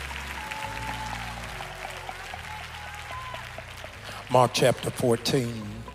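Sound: audience clapping hands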